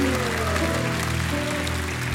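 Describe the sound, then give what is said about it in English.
A large audience at a sermon claps and shouts praise together in a steady, dense wash of applause and raised voices, loud and continuous for the whole stretch without a break. “Oh, somebody give him a hand clap and a shout of praise.”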